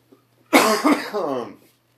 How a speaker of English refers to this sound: Excuse me. I have a bit of a sore throat. So, I apologize, guys. Or, you know, if I have any coughing fits or anything.